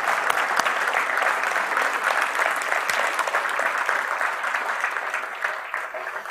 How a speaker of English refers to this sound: We got more clapping, okay.